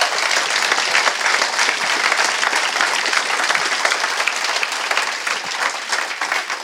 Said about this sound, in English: give these guys a round of applause for being...